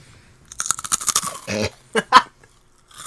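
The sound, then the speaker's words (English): Loud crunching of flaming hot Cheetos with lime being chewed: a quick run of crisp, crackly bites, then a few separate louder crunches with short pauses between them. No talking. “That's some delicious flaming hot Cheetos with lime.”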